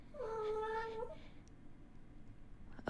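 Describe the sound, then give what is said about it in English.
A single drawn-out cat meow, sharp and slightly strained, lasting about a second against a low background rumble, followed by quiet; no one speaks. The cat was startled when a coffee cup flew across the room and smashed on the floor. “For some reason, my coffee cup just flew across the room and smashed on the floor and freaked the cat out.”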